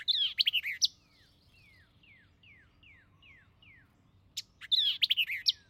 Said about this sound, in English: I meet the latter bird only in the thick, bushy growths of low, swampy localities, where, eluding the observer, it pours forth its song with a sharpness and rapidity of articulation that are truly astonishing.